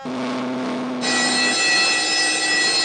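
A steady hum gives way to a bright, sustained bell ringing from a cereal-testing machine after Rice Chex and Wheat Chex cereals are put in its slot and the button is pushed; the ringing starts suddenly and holds loud and shimmering to the end, with no one speaking.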